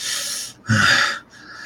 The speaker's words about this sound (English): breathing heavily.